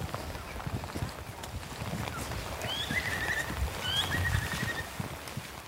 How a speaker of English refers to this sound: A bird call, the rain falling on the soft tundra. Somehow it's like the vastness actually makes it easier to notice the details.